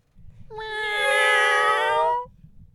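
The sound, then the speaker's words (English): Several voices join in one long, loud imitation of a cat's meow, a drawn-out wavering tone lasting about two seconds over a low background rumble. “Can we get a sound, just a quick sound clip of us all meowing?”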